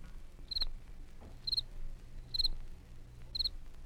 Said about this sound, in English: The chirp of a cricket.